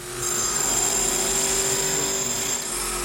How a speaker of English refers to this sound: So, there's been a lot of jackhammering going on over here, and it's loud as fuck. I actually, I recorded, a little clip, on my trusty iPhone, just so you can, I'll get a feel for what I'm dealing with. So here, I'll play you some jackhammer.